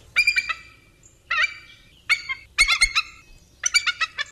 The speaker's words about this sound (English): A bald eagle. You're correct. Yes. Yay. That's a tricky one because people think it's all like that, like,